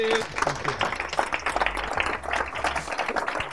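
An audience breaks into a steady round of applause, dense overlapping claps filling the whole stretch at an even, moderately loud level, with some murmuring voices mixed underneath.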